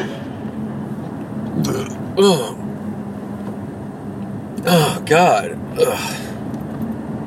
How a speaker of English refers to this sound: Oh, excuse me, sorry. There was nothing nasty going on, it's just weird-ass hiccup out of nowhere. Nothing all day.